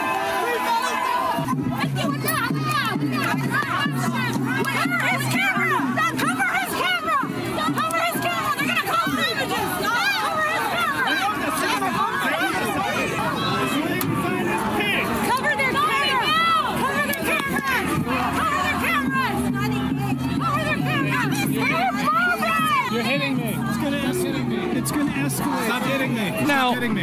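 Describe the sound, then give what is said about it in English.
A loud, chaotic pro-Palestinian protest crowd, with many voices screaming and shouting over one another, including "Cover the camera," in a constant, dense din that barely lets up for the full length. “out there may be wondering, after hearing this cacophony of noise, what were the pro-Palestinian protesters screaming, "Cover the camera," for?”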